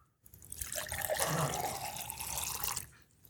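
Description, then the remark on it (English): Fresh, cool water pours steadily into a drinking glass held by a person for about two and a half seconds, a bright splashing trickle that rises and then tapers off, with no talking. “Hold this glass. Okay. Okay, so this is fresh water. Fresh, cool water.”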